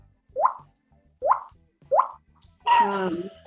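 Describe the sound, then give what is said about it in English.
A voice mimics a water drop with three crisp, evenly spaced mouth plops, each a quick rising 'bloop', followed by a longer voiced, warbling vocal sound at the end. “Okay, I got the water drop.”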